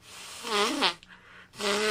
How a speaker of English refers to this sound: Hold on. I'm blowing my nose.